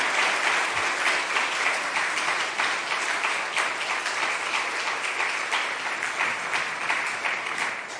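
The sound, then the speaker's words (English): A crowd applauds steadily for several seconds, a dense, even wash of many hands clapping at once, sustained at a constant level without a break or any voices standing out. “Okay, so we're admittedly bad clappers.”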